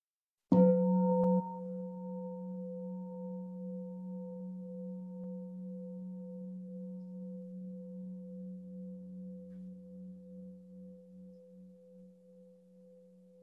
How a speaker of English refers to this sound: I'd like to just pause again for a sound of the bell.